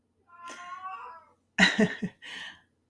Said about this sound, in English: My other cat, the cat who still exists, Starla, she has taken over meowing from Bella.